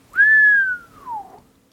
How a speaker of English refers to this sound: Cue low whistle.